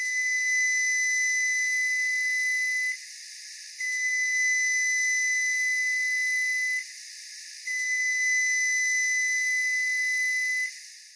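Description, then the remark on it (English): A newer model Frigidaire microwave sounds three long, steady electronic beeps, each lasting about three seconds with short pauses between, loud over a faint background hiss. “Here are the three long beeps of a newer model Frigidaire microwave.”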